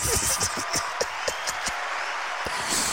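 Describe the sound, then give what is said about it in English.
A short burst of hand clapping for a guest on a show, a handful of sharp, fairly quick claps over steady background hiss, thinning out and ending with one last isolated clap. “Okay, let's give him a hand clap for it.”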